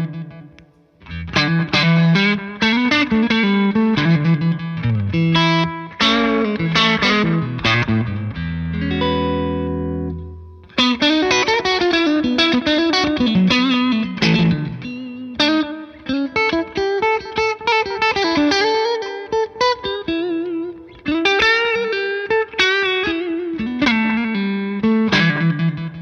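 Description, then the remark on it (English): An overdriven electric guitar, played through a new Mad Professor pedal with a Fender-like voicing that nods to old Blackface amplifiers, plays a continuous run of melodic riffs and bends with a bright, steely tone. It is loud and unaccompanied, with one brief sustained low chord in the middle. “Definitely has the steelier Fender scoop in there as well.”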